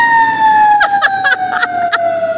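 emergency vehicle siren

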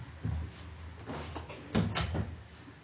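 door being closed

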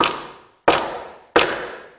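knocking on a door

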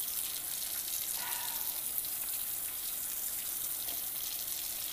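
water running

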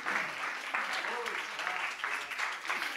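audience clapping in praise

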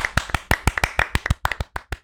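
hands clapping

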